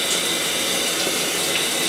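Shower water runs in a steady hiss as a son showers his mother, washing her with a washcloth; a continuous even spray that holds at the same loudness throughout with no voices.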